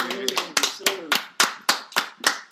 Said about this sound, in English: Give yourself a round of applause for making it.